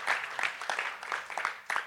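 Audience applause: a dense, steady patter of many hands clapping at once, bright and crackly, sustained at an even level throughout with no voices standing out.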